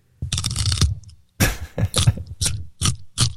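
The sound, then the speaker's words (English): A loud, crackly crunch of biting into a specially bred raw carrot, then a second sharp bite followed by a steady run of crisp chewing crunches, with no talking. “I mean, listen to the crunch on these things.”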